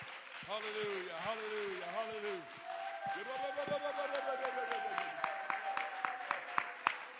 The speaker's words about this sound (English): Why don't you clap your hands one more time? I feel Jesus in this house right now.